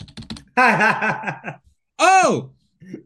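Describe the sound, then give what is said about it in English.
A quick burst of computer keyboard keys clacking for about half a second, followed by someone's loud voiced sounds, like chuckling and a rising-falling exclamation. “My keyboard stopped working.”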